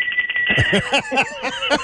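A bell rings rapidly and repeatedly, a bright metallic trill with a steady high tone that keeps sounding for the whole two seconds, fairly loud.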